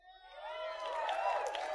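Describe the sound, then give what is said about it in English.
An audience at a Quake Champions game presentation cheers and applauds, many voices whooping together as the noise swells quickly and holds at a loud, steady roar for a couple of seconds. “Oh, this whole waiting for applause thing for every time.”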